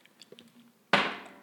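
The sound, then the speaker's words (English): A coffee mug slammed down hard, one sudden loud knock with a ringing tail that fades out, following a few faint small clicks and taps. “I just slammed my coffee mug wicked around.”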